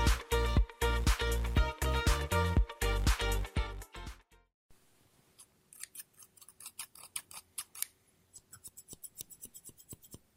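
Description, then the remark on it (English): Crisp scissor snips cutting paper, starting as a loud rapid run of cuts, then a short pause and softer, sparser snips that quicken and brighten toward the end. No talking. “ASMR Scissors No Talking Snips and Cutting Paper”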